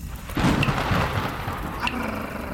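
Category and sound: nature, thunder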